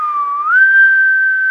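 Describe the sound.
A person whistles a clear, steady note that slides up to a higher pitch and holds there, fairly loud, with no talking.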